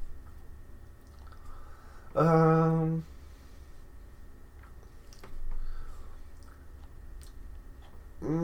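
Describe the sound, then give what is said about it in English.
Wet mouth sounds of someone drinking water, with sips and swallows and a brief louder gulping noise, heard on their own without talking. “Water, that's some good stuff there.”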